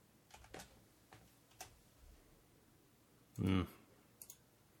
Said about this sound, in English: What are we typing in?